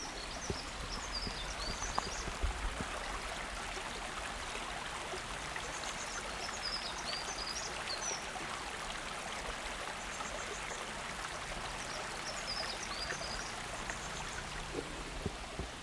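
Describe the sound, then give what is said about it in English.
A small river babbles and trickles steadily, a continuous bright wash of moving water, with faint bird chirps scattered in the background and no voices. “Sounded like a beautiful sparkling little river, sparkling in the sunlight, absolutely gorgeous.”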